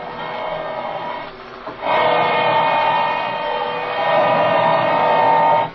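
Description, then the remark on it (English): A power drill whines steadily with a rich, buzzing motor tone. It eases off briefly, then surges back louder and keeps grinding evenly until it cuts off at the end. “This drill's getting awful hot.”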